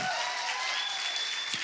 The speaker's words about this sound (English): And if you believe that, give the Lord a clap and a shout. Come on, shout like you got energy.